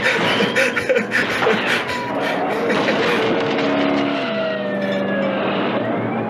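A six-ton truck plows into a police car of about one ton: loud crunching, clattering impacts in the first couple of seconds, followed by a heavy, continuous engine roar and grinding drone, loud.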